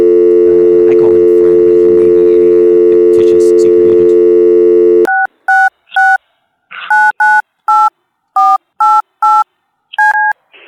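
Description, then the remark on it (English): A steady telephone dial tone hums for about five seconds, then cuts off into a rapid string of about eight short, loud touch-tone dialing beeps as a call is placed. “I think what we're going to do now, if you'll have to excuse me, I'm going to reach across the phone lines here and dial in a certain...”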